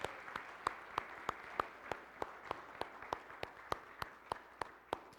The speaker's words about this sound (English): It's Mother's Day. Would you help me take a moment to appreciate all the women in our lives? You can clap for them, whether they're sitting next to you or somewhere far away. Thanks, ladies.